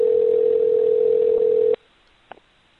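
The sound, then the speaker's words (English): A telephone ringback tone on an outgoing call placed to see whether a man answers and to leave a message on his answering machine: one steady, thin electronic buzz over the phone line, lasting under two seconds before cutting to near silence, followed by a faint click. “It should be ringing any second now. There it goes.”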